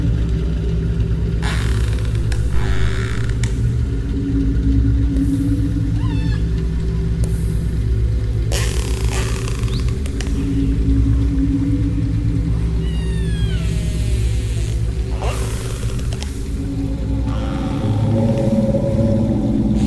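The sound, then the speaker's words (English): Open-source recordings of whale song run through granular synthesis over virtual instruments from a Spitfire Audio collection: a steady, layered low drone with high swooping and chirping calls, fragmented bursts, and wavering tones, loud and continuous throughout with no speech. “incorporated open source recordings of whale calls over virtual instruments from a Spitfire audio collection, which transformed whale songs into granular synthesis.”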